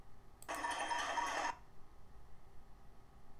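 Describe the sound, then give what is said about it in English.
A loud, dense burst of pots and pans banged by protesters in Argentina against the release of prisoners, a rapid metallic clatter with ringing overtones lasting about a second, then only a low background murmur. No one speaks. “The sound of pots and pans against the release of prisoners in Argentina.”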